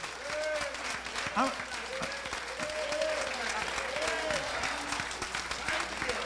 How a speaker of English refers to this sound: How many enjoy service on today? We just want to give the Lord a hand clap of praise.